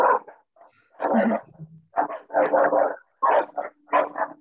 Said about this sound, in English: Oh, is it someone's dog? Sounds like a little cough. Is that your dog?